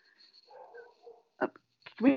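A dog whines in thin, high-pitched whimpers, then lets out two sharp barks, the second louder and fuller, with no one speaking.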